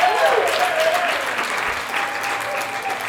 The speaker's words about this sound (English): Can I get this old man welcome? Bring a round of applause.